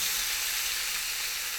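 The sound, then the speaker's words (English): Steady, bright sizzling of bologna frying in a pan for a fried bologna sandwich, a continuous crackling hiss with fine popping texture and no talking. “Fried Bologna Sandwich”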